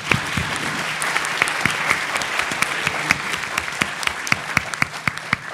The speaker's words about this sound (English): Well, with that, we're seeing quite a line at the mics. We're going to go to questions, but let's first have a round of applause for our panel, please.